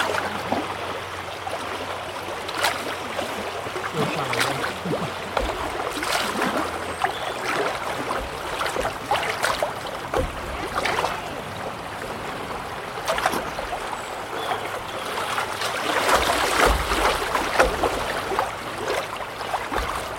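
Steady rushing water of the River Wye streams past, with intermittent small splashes and lapping against a paddleboard as it drifts along; no one speaks.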